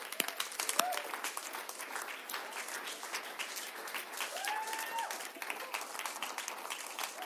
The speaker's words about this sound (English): So I'm just going to introduce, well, I'm going to just invite a panel up, and they're going to come up, and let's give them a round of applause as they do.